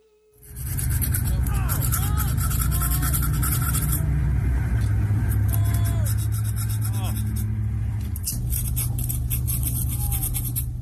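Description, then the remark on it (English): A woman files down her front teeth in a TikTok clip: a continuous gritty rasping with rapid back-and-forth strokes, loud and steady for about ten seconds over a constant low droning hum. “This is a woman filing down her front teeth.”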